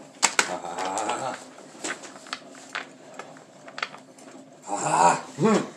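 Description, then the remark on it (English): Scratching of a pen moving across paper in short, irregular strokes, quiet and dry, with a brief squeaky, voice-like sound near the end. “I don't have the confidence in myself to not ruin your pens to write like that.”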